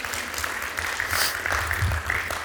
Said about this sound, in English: Come on, can you give him a good round of applause this morning?